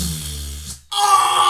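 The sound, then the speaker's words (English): A mouth fart: a low, buzzing, fluttery lip vibration lasting under a second, followed by a short pause and then a burst of breathy, hissy noise. “Mouth fart.”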